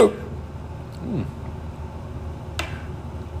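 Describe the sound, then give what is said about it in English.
A couple of short, abrupt hiccups, a few seconds apart, fairly soft against a low background hum. “And I got the hiccups.”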